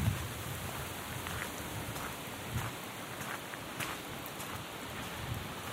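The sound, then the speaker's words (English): Steady rain hisses and patters over a low, gusty rumble of wind in stormy weather in the gully at Inverness, with scattered louder drips and rustles breaking through at moments. No one speaks. “It's very stormy.”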